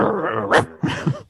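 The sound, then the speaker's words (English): A person imitates a dog's growl, a low rumbling snarl that rises into two short, harsher bursts, fairly loud with no other talk. “Yeah, just staring in the mirror, just growling at your reflection.”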